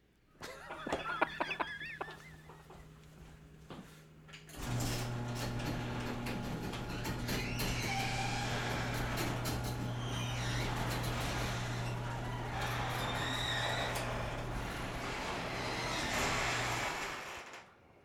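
A motorized garage door rumbles open for about twelve seconds, a steady mechanical hum and rattling drone, preceded by a few scattered clicks and ticks. No one speaks.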